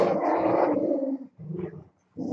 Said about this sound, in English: And then you get the dogs going. So now I gotta stop talking.